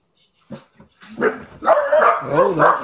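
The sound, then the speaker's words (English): A dog barks sharply, then breaks into a continuous stretch of loud, pitch-wavering barks and snarls, like a scuffle or brawl, with no one speaking. “Oh, whoa, dog. There's a brawl.”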